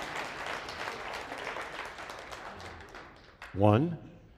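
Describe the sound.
An audience claps for a volunteer who acted out Lazarus coming forth. Many hands make a dense, steady patter that gradually thins out, then a single voice calls out briefly at the end.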